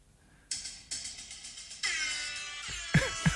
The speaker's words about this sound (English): I've searched air horn on this stupid app. There's so many.